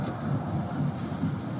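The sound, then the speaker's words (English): A steady, low rumble of road noise inside a moving car going through a toll area, with a couple of faint, brief high ticks over the constant drone. No one speaks. “We're fumbling for our easy pass in the car because we're getting to go through a toll area right now.”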